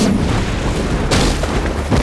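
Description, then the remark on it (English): A loud, rumbling magical energy blast shot from a character's hands booms, surging with a sharp, hissing burst partway through, then a second smaller whoosh near the end, all over a heavy low roar with no voices. “Bonka shot another blast from his hands, this time at Timmy.”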